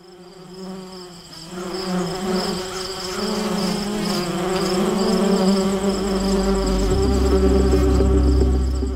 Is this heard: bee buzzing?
yes